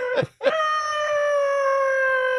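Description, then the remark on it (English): A person imitates a wolf howl: two short rough yelps, then one long, steady, high-pitched held note that stays loud and even until the end. “No, it's wolf.”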